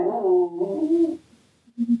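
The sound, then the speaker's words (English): Dogs barking at home, starting with a drawn-out, whining, tonal yelp for about a second, then a pause and a couple of short, sharp barks at the end. No one talks. “With doing this in the pandemic, I'm still at home, not at school, and my dogs are barking.”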